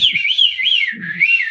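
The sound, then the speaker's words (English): A person whistles a wavering, warbling imitation of a bird's call, the pitch sliding up and down continuously for about a second and a half, fairly loud. “I can't remember what kind of monkey it was, but it climbed up the top of a tree staring at a bird and the bird was quite happily going...”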